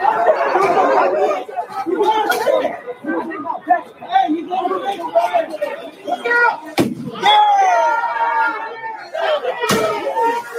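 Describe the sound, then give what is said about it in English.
A crowd that has just broken a bank's window shouts, cheers and jumps up and down excitedly without pause, punctuated by two sharp, loud bangs partway through, with the whooping rising again after each. “Jumping up and down and cheering because they broke the window.”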